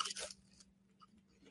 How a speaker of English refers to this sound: Ooh, that's a crunch. That's a crunch if I've ever heard a crunch. I'm getting cinnamon sugar everywhere.